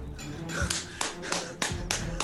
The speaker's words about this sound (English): I stand up and I'm clapping.